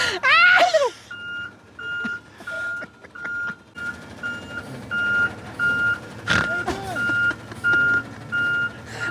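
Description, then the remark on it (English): A garbage truck's reversing alarm beeps steadily in a regular high-pitched pulse, repeating about every half second over a low engine rumble, with a few brief squeaks and knocks mixed in. “Hear that's that a song?”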